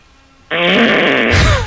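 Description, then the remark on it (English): A loud raspberry-style fart noise made by a man with his mouth, starting abruptly after a brief quiet moment and sustained for over a second with a buzzing, sputtering texture. “The only reason why he said that was so he could make the fart noise in his mouth.”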